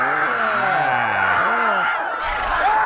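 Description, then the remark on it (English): A loud, dense crowd roars continuously, many voices overlapping in excited screams and rising whoops that swell and fall throughout, as it urges a Philly fan to take a mouthful of horse manure. “Now we have a Philly fan putting a mouthful of horse poop, taking a mouthful of horse poop after the urging of the crowd.”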